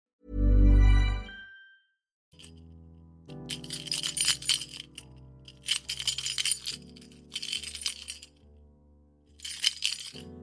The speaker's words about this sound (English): Quite aggressive key jingling there. And the reason is it's not an ordinary set of keys. I recently got myself a tracking device for my keys and a tracking device for my wallet, because I lose my keys and my wallet like every day.